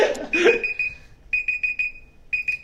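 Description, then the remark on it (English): A timer alarm beeps in rapid bursts of high, steady tones, sounding in three clusters with short pauses between, loud, after a brief rustle at the start. “Just stared at the timer, not answering.”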